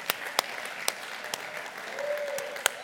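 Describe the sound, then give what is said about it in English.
A church audience claps together in worship and praise. Many hands make a steady wash, with a few sharper, louder claps popping out at uneven intervals; a faint sustained tone briefly rises underneath. “So I just want to have a little bit of clap and worship and praise.”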